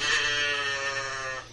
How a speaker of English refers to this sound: Cows.